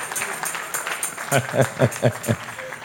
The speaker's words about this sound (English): Clap, clap, clap for her, clap for her. You are not clapping for her.